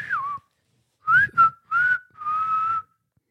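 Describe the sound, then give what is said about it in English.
A person whistles in five short, sliding bursts: a falling swoop, quick rising chirps, then a longer wavering note. The whistling imitates a dolphin's calls, with no talking. “According to National Geographic, dolphins use a unique whistle to distinguish between different members of their pod.”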